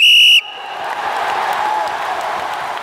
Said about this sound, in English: But before we get to Charles, let's blow the whistle for the kickoff.